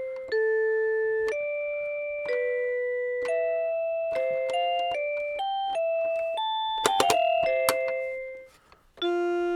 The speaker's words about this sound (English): But like I said, the bell sound is actually really pretty.